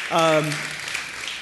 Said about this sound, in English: That's right. You start that cheer.